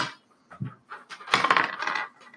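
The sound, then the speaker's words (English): Dice rolled for damage in a tabletop role-playing game clatter and tumble across a hard tabletop, a few light clicks first, then a louder burst of rattling that skitters and settles. Fairly loud, with no talking. “Not that rolling. Sorry, wrong dice.”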